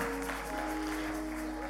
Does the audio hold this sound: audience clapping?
yes